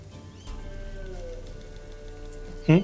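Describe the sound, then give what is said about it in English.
Light, ever-present drizzling rain, not severe, patters steadily throughout, a soft continuous hiss of drops, with faint sustained musical tones beneath and a brief burst of a voice near the end. “From the music, is it in character raining? There's like a light drizzle, kind of ever present, but excellent.”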